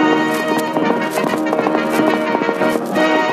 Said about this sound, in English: All right. Come on, Costello. I've got the Sultan's horse. Let's go.